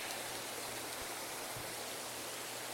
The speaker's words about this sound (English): Now do you hear it? Is that running water? More like falling.